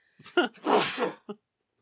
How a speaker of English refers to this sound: I gotta sneeze.